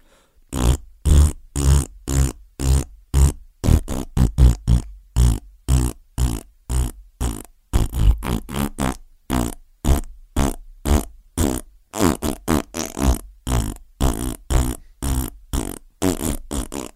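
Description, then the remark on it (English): A voice makes a long run of rhythmic fart noises with the mouth, loud, each blat a separate note forming a bouncy tune resembling an intro theme, for about seventeen seconds, with no talking. “a track that sounds surprisingly like our intro theme, but all the notes are done with fart noises.”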